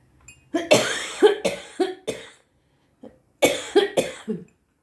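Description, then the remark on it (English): A person coughs hard in two bursts: about four harsh, wet coughs in quick succession, a short pause with a faint catch of breath, then three or four more. Loud, no talking. “I'm sorry about the coughing.”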